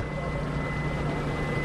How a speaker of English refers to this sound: On a chilly night, a Colville boat with tribal and federal biologists aboard motors to one corner of the 150-mile lake.